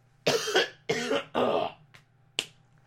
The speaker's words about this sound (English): oh god, I gotta cough. Hold on.